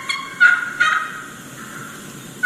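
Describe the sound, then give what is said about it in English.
A wild turkey hen gives a few short, questioning yelps, two or three clear notes in quick succession, and a gobbler responds to her, against a quiet outdoor background with no voices. “They're questioning yelps.”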